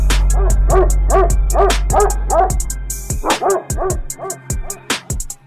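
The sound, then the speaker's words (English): A dog barks rapidly and repeatedly, loud, in quick sharp bursts with a brief pause midway before the barking resumes. No one speaks. “Now it's time for the dog of the day segment of the show.”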